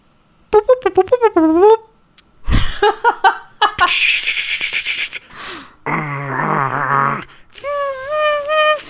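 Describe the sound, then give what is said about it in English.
A dial-up modem connecting: warbling electronic tones, sharp bursts of hissing static, a harsh buzzing stretch, then more wavering chirps, all loud and unbroken for about nine seconds with no talking. “Like, you'd spend all afternoon trying to sign in via your dial-up modem, and it would kick you off, like, the second you got in sometimes.”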